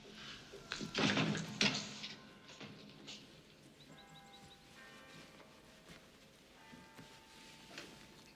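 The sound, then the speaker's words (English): Clemenza pries at a door with a screwdriver to jimmy it open: a burst of scraping and rattling early on, then quieter clicks and creaks over a faint, steady tonal hum. “Of course, the friend doesn't happen to be home, and Clemenza conveniently has a screwdriver in his pocket to jimmy in the door and sort of steals the rug.”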